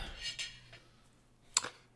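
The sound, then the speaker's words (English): A few soft clinks and clatters of dishes and cutlery being gathered up and taken away from a table, with one sharper knock of crockery near the end, faint, with quiet otherwise. “Did she just come back in to take your dishes away?”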